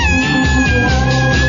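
A loud, drawn-out cat meow holds steady for more than a second, prominent, with a low rhythmic backing sound running underneath.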